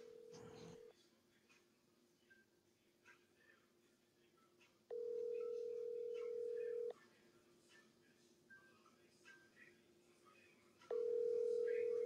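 A phone's outgoing ringback tone purrs in steady, evenly spaced bursts, one short and two longer, each about two seconds with quiet gaps between, clear over faint background murmur.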